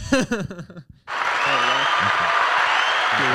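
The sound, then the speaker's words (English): A short spoken phrase, then a sudden burst of steady applause, a dense even wash of clapping that holds at full loudness to the end while a voice murmurs faintly underneath. “I can kind of hear the applause.”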